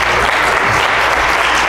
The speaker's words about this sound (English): I got 2-3 hand claps.